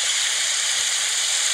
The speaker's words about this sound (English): Okay, here's rain on a lake.